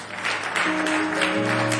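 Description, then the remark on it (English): A church audience claps for a woman who answered a question during a sermon, a steady, dense burst of applause lasting about two seconds, with sustained low keyboard or organ notes holding underneath and no voices. “Can you clap for her?”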